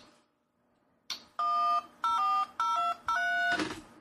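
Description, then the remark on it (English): A click, then four loud touch-tone dialing beeps in quick, even succession, each a steady dual-pitched tone; the last blurs into a short rush of noise. No one speaks. “I guess you could take a phone, an actual phone, and control K9 with a dial touch phone.”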